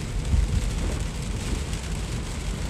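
heavy rain

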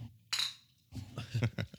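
glasses clinking

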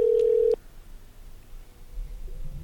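telephone ringing

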